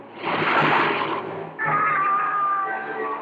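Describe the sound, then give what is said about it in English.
Godzilla roars: a loud, screeching monster roar made of two drawn-out bursts, the second turning into a shrill, wavering wail, with no one talking. “Godzilla! Roaring defiance to the only enemy on Earth strong enough to challenge him.”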